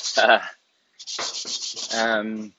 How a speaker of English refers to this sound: Sorry, this is going to be real loud because I'm like literally cleaning walks. So I'm scrubbing and buffing and stuff like that. And banging and whatever.